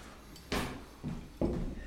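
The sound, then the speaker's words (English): A kitchen drawer where spoons are kept slides open and shut, producing three fairly loud bursts of sliding rattle and thumping within about two seconds, with no talking. “Where are those spoons? Right down the first drawer, second drawer.”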